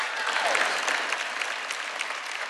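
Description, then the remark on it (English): An audience at a church service applauds steadily, a dense wash of many hands clapping at an even level throughout, with no voices standing out above it. “Go ahead and applaud, because I've got to get my breath.”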